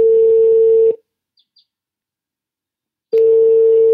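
A steady electronic ringing tone sounds for about a second, falls silent for two seconds with a couple of faint chirps, then starts again. It is a Skype call ringing out, with no voices.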